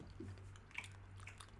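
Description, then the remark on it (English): Someone quietly chews jelly beans, with soft, wet squishing and a few faint sticky clicks over a steady low hum. No one speaks. “Is this a bad time to tell you guys I don't even like jelly beans?”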